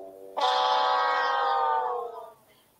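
A 504 state-level Fendt tractor making a tractor-pull pass bursts into a loud, steady, tonal engine roar that holds for about two seconds, then sags slightly in pitch and fades out. No one speaks.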